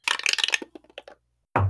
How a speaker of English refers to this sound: Well, let me roll a dice and I'll tell you. Roll me some history.